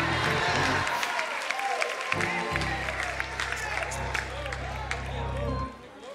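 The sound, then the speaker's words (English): A crowd claps and cheers continuously with dense, steady applause and excited shouting voices, plus a low rumbling hum underneath for most of the stretch. “Come on, clap your hands, everybody.”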